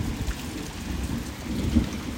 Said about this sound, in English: Did you hear that? That's like some fucking thunder from down under. Wow.